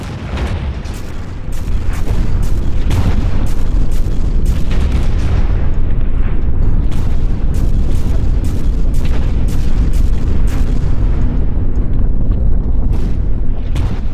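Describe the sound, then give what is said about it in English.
A continuous, loud French artillery bombardment, with about one gun for every 10 yards of front: deep rumbling booms pile on top of one another with frequent sharp blasts cutting through, forming a dense, unbroken roar for the whole stretch. “When the guns began their bombardment, it was like a raging storm.”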